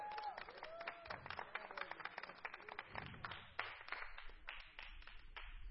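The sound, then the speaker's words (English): A crowd claps steadily in praise of the Lord, many hands overlapping in a dense, continuous patter with a few voices calling out beneath it, sustained for several seconds at moderate loudness. “Give the Lord one more hand clap of praise.”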